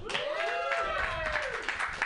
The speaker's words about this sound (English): This is the Mutiny Happy Hour open mic. Let's get a round of applause for that.